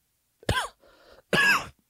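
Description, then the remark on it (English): Two harsh, throaty coughs separated by a brief raspy breath, with no talking. “Sorry about the coughing there.”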